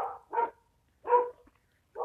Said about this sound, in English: You're going to hear all the barking dogs of this neighborhood, so bear with me.